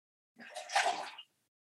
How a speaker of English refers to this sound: I'm just going to take a drink of water, so we may want to edit this,